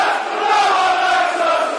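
football crowd roaring

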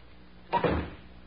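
door being closed

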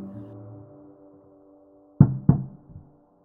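knocking

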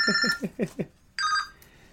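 cell phone ringing

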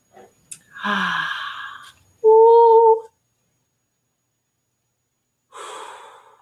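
deep breathing

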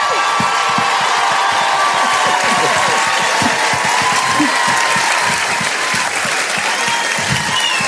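audience applause

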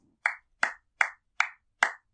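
one person clapping hands

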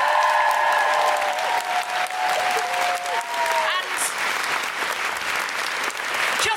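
audience applause

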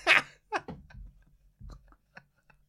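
sneeze

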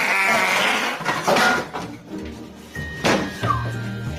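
fart

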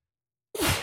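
sneeze

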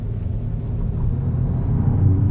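car engine accelerating

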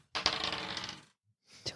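dice rolling

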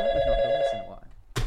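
telephone ringing

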